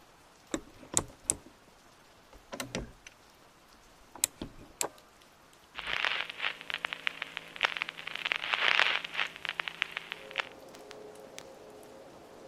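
Rain on a rainy afternoon: scattered drops tick at first, then rain patters steadily on a hard surface for several seconds before thinning out again; no voices, moderate in loudness.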